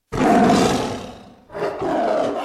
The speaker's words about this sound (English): If you do not wish to annoy this big, stripy, feline carnivore, do not look directly into this, its ocular region.